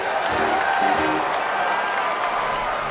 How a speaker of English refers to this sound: Welcome to the new Trujillo Stadium. Tonight, joining the Generalissimo and Dr. Joaquin Antonio Balaguer to bless our new athletic field, please give a grand round of applause to our guest of honor, La Señorita Minerva Mirabal Reyes.